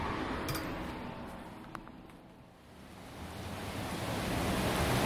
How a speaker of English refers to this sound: Sounds a little more rainy now.